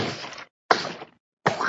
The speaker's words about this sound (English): from Germany headbutted 43 watermelons into pieces.